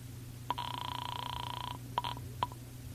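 Marlowe dials a telephone to call Ruth: a sharp click, a steady electronic tone held for about a second, then more clicks and a brief tone, all over a low background hum.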